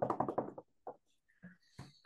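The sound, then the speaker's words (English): A quick run of about five sharp knocks on wood, followed by a few scattered, softer taps and thuds with a brief faint tonal ring. “But it's okay because he does not muff them. Knock on wood.”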